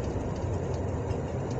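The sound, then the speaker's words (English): A steady, heavy rumble of a freight train rolling by, its rail cars carrying containers, container trailers and regular trailers: a deep low-end roar with a broad wash of rattling noise, continuous and unbroken, with no voices. “I see the rail cars with containers on them, container trailers and regular trailers.”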